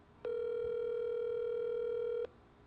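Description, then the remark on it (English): A phone call rings over speakerphone: one loud, steady electronic ringback tone lasting about two seconds, with a buzzy overtone-rich timbre, starting and stopping abruptly with no voices. “it on speaker so the listeners can hear.”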